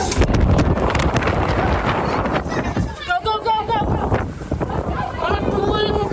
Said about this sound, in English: The 110-mile-an-hour wind gusts bear down on the restaurant door, trapping them inside.